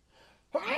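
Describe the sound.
A single sudden, forceful sneeze bursts out after a brief quiet moment, loud and breathy with a voiced edge, cut off as it finishes.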